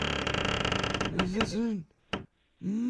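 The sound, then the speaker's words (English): An old door hinge at a storage facility creaks in a long, grinding groan that breaks off partway through, followed by short voiced sounds and a brief sharp click, moderately loud. “Oh, that was an old one. You guys need to get some WD-40 on this.”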